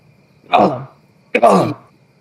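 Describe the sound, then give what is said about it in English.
A voice imitates Gollum's throaty cough: two guttural, rasping gulps about a second apart, fairly loud, with no other talk. “I said Gollum. I coughed Gollum.”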